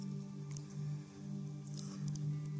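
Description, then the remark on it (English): The thin plastic seal of a prepackaged communion cup is peeled back in a few brief, soft crinkling bursts, quiet, over a steady low background hum. “You turn the cup over and peel off the other side.”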